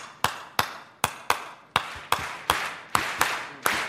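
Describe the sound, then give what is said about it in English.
An audience at the Apollo in Harlem claps together in a repeating syncopated clave rhythm, about ten sharp, loud claps in under four seconds, with slightly smeared attacks from many hands and no talking. “So everybody clap with me this rhythm.”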